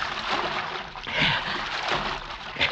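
Footsteps of a man wading through creek water at night in spotty moonlight: a steady wash of sloshing and splashing, with heavier surges of water about every second as legs push through, fairly loud.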